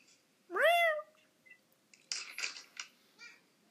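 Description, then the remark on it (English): A cat gives one loud meow with a rising, drawn-out tone, followed by a few seconds of soft clicking and rustling noises. “Your cat just said, okay.”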